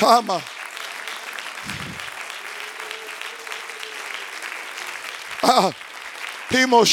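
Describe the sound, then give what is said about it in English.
A church audience claps hands to the Lord steadily throughout, a dense wash of hand claps, while a man's voice calls out in brief shouted bursts at the start, middle and end. “Oh, can you clap your hands to the Lord for a moment?”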